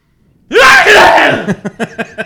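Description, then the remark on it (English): A man imitates the way his wife sneezes with his voice: one loud, drawn-out explosive burst, followed by a string of short, rapid, rhythmic huffs that fade off. “I have never been a fan of the way my wife sneezes.”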